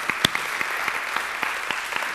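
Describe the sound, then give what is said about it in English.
An audience at North Star claps together in praise to God during a morning service, sharp beats landing in a steady rhythm about three times a second over a thick, continuous wash of crowd applause, with no voices. “If you believe that, give God a praise clap this morning.”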